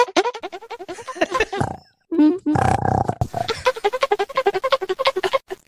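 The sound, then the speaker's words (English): A man's voice imitates the Donkey Kong arcade video game sound with quick rhythmic vocal blips, a brief pause, then a buzzy growling stretch before more rapid pulsing beeps. “Because I had to learn how to make that noise.”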